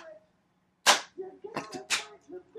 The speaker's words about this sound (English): We're doing a clap. We're doing a big clap. Yes.